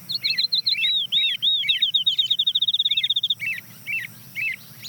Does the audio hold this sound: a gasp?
no